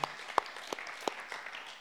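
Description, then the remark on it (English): Brief, scattered applause from a church audience clapping for God: a handful of sharp, separate claps about every third of a second over a soft, hissy wash of quieter clapping, fairly faint overall. “Yeah, you can give God a clap for that.”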